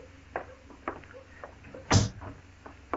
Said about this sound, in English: Close the door, Chester.